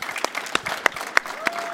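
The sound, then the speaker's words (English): An audience at a second service applauding, steady dense clapping with sharper individual claps popping out of the wash at irregular moments, fairly loud and with no voices over it. “Second service always claps more.”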